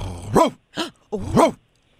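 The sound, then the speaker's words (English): A man's voice imitates a dog barking on air on a radio show with a veterinarian: three loud, throaty woofs in an uneven rhythm, the first and last longer and more drawn out, with a short gap before the final bark. “Barking into the radio to a veterinary professional.”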